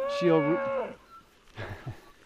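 A dairy cow gives a long, harmonic moo lasting nearly a second, followed by a softer, lower grunt-like moo after a short pause.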